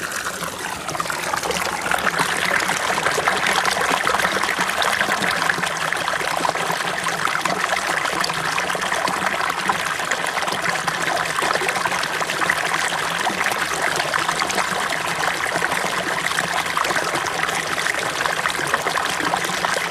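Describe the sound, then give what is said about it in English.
A steady stream trickling and babbling over rocks, continuous, with a dense bright wash of water noise that holds at an even level for the whole stretch, no voices. “you rest into your body and you let those things go and you visualize those things going down your imaginary stream, your imaginary river.”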